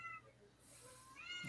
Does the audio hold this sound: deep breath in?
no